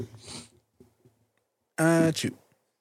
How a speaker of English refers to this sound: Damn, I got to sneeze so fucking bad.